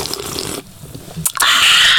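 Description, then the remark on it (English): A sip from a drink taken right at the microphone as ASMR: a brief airy slurp, then a sustained loud hissing draw, with no one talking. “That's just take a sip, ready, ASMR.”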